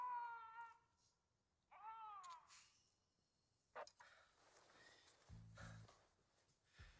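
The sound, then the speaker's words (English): A person tries to howl like a wolf, to call the Alpha, but produces two strained, wavering cat-like yowls, the second one rising and breaking, followed by a short sharp noise and some muffled shuffling and low thumps. “I mean, that was a howl, right? Yeah, technically. Well, what did it sound like to you? Like a cat being choked to death,”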